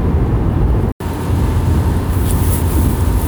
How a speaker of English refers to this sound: All right, I'm back in the car. Forgive me for the noise. I'm on my way home from work.